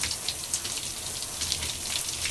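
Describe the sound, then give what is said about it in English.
Steady running water splashes and patters continuously, like a stream from a shower hitting soft exfoliating gloves as they are washed off, moderately quiet, with no voices. “And then I'm just going to wash off the gloves.”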